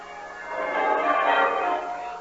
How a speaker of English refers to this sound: A bright, shining morning, and the bells of the town pealing out there beyond his window.